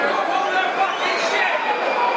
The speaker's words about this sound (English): As you can hear, that's the crowd's verdict on the first 9 minutes of proceedings.